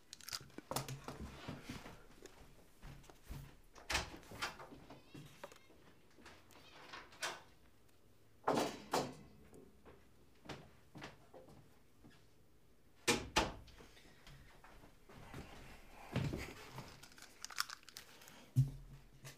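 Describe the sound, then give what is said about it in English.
A cat meows loudly and insistently several times outside a closed basement door it cannot get through, its cries coming in irregular bursts, mixed with crinkling and rustling noises. “The basement door was closed and a cat couldn't get downstairs and was just screaming outside my door.”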